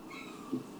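A single short cat meow, soft and brief, rising over a quiet room hum with no one talking.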